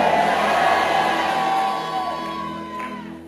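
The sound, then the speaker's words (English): A church audience shouts amen together in a loud, sustained roar of many voices that swells, then gradually fades and thins out over a few seconds. “You believe that? Shout a loud amen.”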